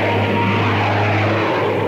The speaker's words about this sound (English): Planes. How low they're flying.